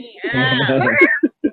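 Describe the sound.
A drawn-out, wavering meow, likely a human voice imitating a cat, rises and falls for about a second, followed by a couple of short voiced sounds.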